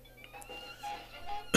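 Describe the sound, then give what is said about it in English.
A single sharp, loud cough bursts out near the end, after a stretch of quiet room tone with faint tonal hum and no speech. “I'm sorry, I have a little cough going on.”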